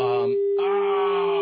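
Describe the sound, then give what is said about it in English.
A steady, unbroken telephone dial tone on the Rick Emerson Show hums at a constant mid-low pitch for the whole moment, with a man's voice talking over it and pausing briefly partway through. “Oh, let's now welcome a dial tone to the Rick Emerson Show.”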